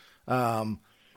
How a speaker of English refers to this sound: excuse me, White Claw burp.